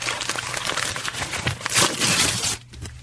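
A sheet of paper with a note written on it, brought as a present, is crinkled and handled. It gives a dense, crackly rustle that runs steadily for about two and a half seconds before dropping to a quieter tail. No one speaks.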